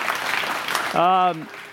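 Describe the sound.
An audience claps in a steady, dense wash of applause, and a single voice calls out briefly over the clapping near the end before it thins slightly.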